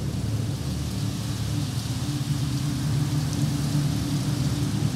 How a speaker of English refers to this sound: It had rained heavily for months. March 8th, quote, pouring rain almost constantly for 24 hours. March 9th, quote, rain almost all night.